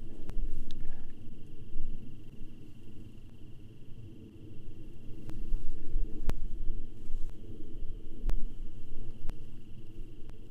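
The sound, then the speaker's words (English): A low, steady rumbling drone of a single airplane passing overhead in a big city, heard from a studio, swelling gently in the middle and easing off, with a few faint clicks and no one speaking. “Well, I suppose maybe you hear the airplane going by, but I don't know if you do.”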